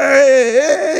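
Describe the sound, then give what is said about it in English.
A voice mimics a child's wailing cry, a single drawn-out, wavering sob lasting about a second, loud with no other talking. “So kids would be crying. I remember kids crying at birthday parties.”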